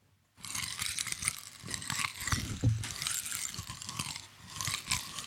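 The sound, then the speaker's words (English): Gingerbread being crunched and chewed as foley: a steady run of dry, crackly bites and grinding that fill about five seconds with no one speaking, loud with brittle high-end snaps. “I hear that spicy crunch to it.”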